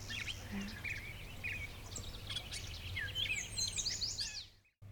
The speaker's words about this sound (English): Oh, and now there's something weird calling. It was a yellow warbler. There, that beautiful clear, sweet, sweet, sweet shredded wheat. That sort of thing. That's a yellow warbler. Okay. Bright yellow, beautiful bird.